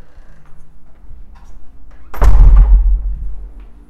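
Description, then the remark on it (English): A door is shut with a heavy, booming thud partway through, its low rumble lingering briefly before fading back into a quiet room hum. “I don't know who's left the door open.”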